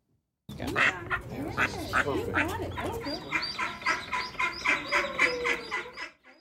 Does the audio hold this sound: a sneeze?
no